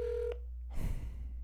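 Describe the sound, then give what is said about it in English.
A steady phone dialing tone sounds for a moment, cut off by a sharp click, then gives way to a burst of rustling, handling noise. No one speaks. “And he said, probably not, but I'm going to call him anyway.”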